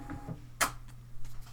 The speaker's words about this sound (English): It did make sound. It made a sound. The printer. Yeah, you'll hear it.